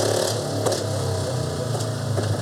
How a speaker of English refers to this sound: They're gonna start all the motorcycles. That's up. All right. We can still talk through that. They sound cool.